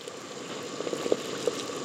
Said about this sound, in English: All right, now I'm going to go ahead and add lasagna to the water now that we have it at a sort of rolling boil here.